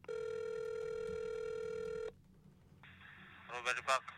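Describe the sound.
One long, steady ringback tone buzzes on the line of an outgoing phone call for about two seconds, then cuts to faint line hiss before a voice at a gourmet market store briefly answers at the end.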